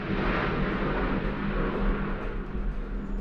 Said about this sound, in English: Talking over, there's an aeroplane.